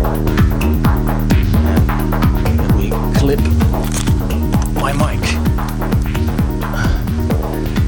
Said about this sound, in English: I'm now gonna shoot some photos.